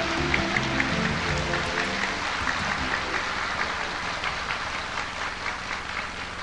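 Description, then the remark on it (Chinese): A large audience applauds steadily, a dense wash of many hands clapping at once, sustained and fairly loud throughout, with faint voices murmuring underneath, as guests welcome Master Ching Hai to give a teaching. “在请各位来宾以最热烈的掌声恭请上清下海师父为我们开示。”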